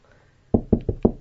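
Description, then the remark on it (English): Five quick, firm knocks on an apartment door in a steady rhythm, hollow-sounding, after a brief moment of quiet. No one speaks. “Come and just knock on this door.”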